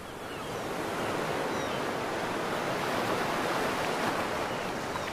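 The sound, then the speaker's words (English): A long, steady breathy exhale through an open mouth, like a rushing hiss of surf, as a voice imitates ocean waves during a breathing exercise. It is continuous for several seconds, with no talking. “Make a sound like the ocean.”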